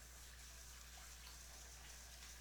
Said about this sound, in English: I'm gonna rinse the rice with cold water. And as I'm rinsing the rice, I'm just swirling it with my hand so that it all really gets wet.